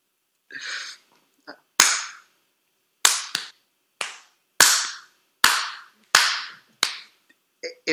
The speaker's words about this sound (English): Were there anything that deserved a slow clap?